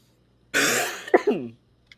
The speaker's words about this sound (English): Maybe my, I can't duplicate things very well with this cough.